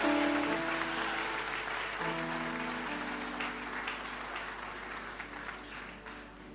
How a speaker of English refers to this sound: Welcome, Dr. Ayim Dankwa, with a mighty clap offering. You are welcome, sir. Oh, that clap offering wasn't good.